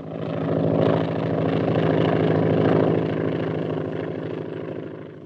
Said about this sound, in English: Say, what's that airplane doing around here?